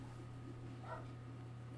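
A dog gives a single short, high whimpering yelp, faint above a constant low electrical hum.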